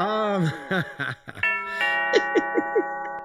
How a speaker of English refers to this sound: Oh, it's a doorbell. Who is it? Who's at the door?